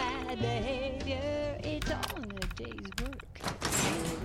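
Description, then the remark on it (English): A video game security door opens with a series of mechanical clunks and a whooshing slide toward the end, while a voice talks over it throughout. “Security door control. Open door.”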